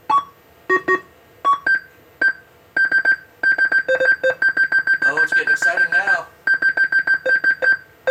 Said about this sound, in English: That's the incessant beeping.